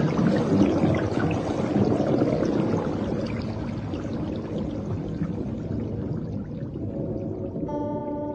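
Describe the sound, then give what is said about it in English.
Water pours in around a person trapped under a lid that will not open, gushing in a loud, steady rush with a deep churning rumble underneath. Near the end, a faint tonal hum rises over the flow. No one speaks. “The water's coming in!”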